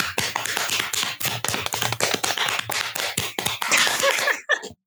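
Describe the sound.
A woman slaps out a drum roll by hand, a quick, steady flurry of slaps on a hard surface, loud and percussive, building for several seconds before cutting off abruptly.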